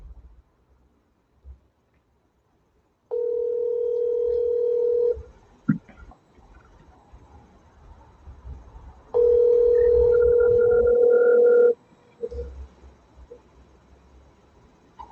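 Two long ringback tones on a phone line, each lasting about two seconds with a steady mid-pitched hum, separated by a quiet pause with faint line noise and a small click.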